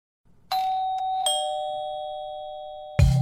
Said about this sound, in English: And I remember I wrote in bold in the email invitation, please ring the bell to get in, because I was hosting and I didn't want to have to keep checking my phone all night.